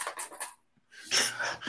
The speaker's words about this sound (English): I got my p coins hanging out. I got a bunch of p coins I'm bringing with me in a few weeks to... Here's all my p coins. No, P coins are what you put in the machine at the train station.